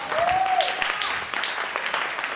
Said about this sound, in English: Oh, somebody give the Lord a clap.